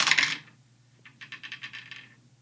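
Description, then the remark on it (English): A die clatters onto a table with a sharp initial rattle, then spins in a rapid series of light, ticking clicks that gradually slow and fade, with no voices. “That spun a long Sounded time.”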